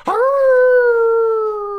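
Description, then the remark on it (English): A person imitates a dog's howl with one long, loud, wavering note that swoops up at the start, then holds and slowly sags for nearly two seconds. “Can you give me a little bark?”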